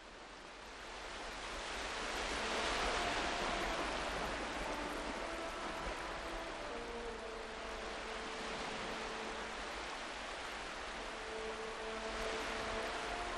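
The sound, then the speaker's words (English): Ocean waves break on a shore in a steady, broad wash of surf that swells and recedes, with faint sustained tones drifting quietly underneath and no voices. “sit back and have a listen to this from Custodians of Ireland, the Majesty of the Sea”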